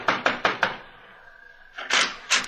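Four quick, sharp raps on a door, a brief pause, then another round of three knocks, fairly loud with no voices.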